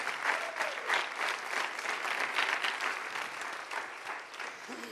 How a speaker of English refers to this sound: Yeah. Stand up. Stand up. Come on. Clap. Come on. There you go. Stand up for them. Yes. I'm their biggest cheerleader. Come on.